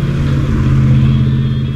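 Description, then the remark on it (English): A red truck's engine rumbles loudly and steadily as it passes by in the opposite lane of a road, a deep continuous drone with no rise or fade over the short stretch and no voices. “The red truck passed by in the opposite lane without incident.”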